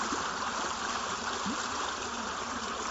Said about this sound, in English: I'm here at this creek collecting a water sample. This creek flows into the Shenandoah River and into the Chesapeake Bay, then into the Atlantic Ocean.